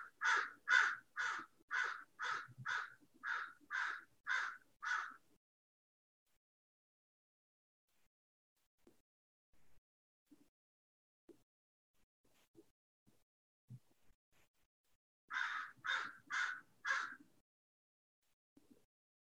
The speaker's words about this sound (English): And hear this bird that's right out my window here. Hello, bird.